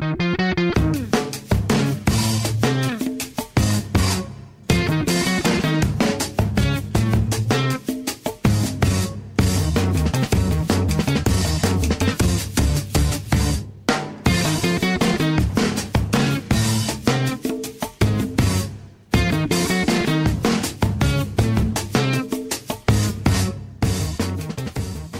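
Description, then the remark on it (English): Busy breakbeat drumming by an English drummer on a real signature drum kit plays loud for the whole stretch, dense hits driving a steady groove with a few brief drop-outs, the kit ringing in an echoey room. No one speaks. “I think there's some random clips of him on YouTube thinking about, but playing these amazing breakbeats and these like kind of echoey rooms on real signature drum.”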